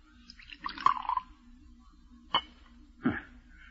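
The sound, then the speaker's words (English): A short splash of poison poured into a tumbler, followed by two sharp, separate clinks or drips. Fairly quiet, with no talking. “Pour it out.”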